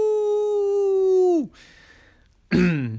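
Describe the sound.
A person telling a story imitates the big bad wolf's howl: one long, sustained tonal note that drops sharply at the end, then a brief pause before another short howl-like vocal burst begins.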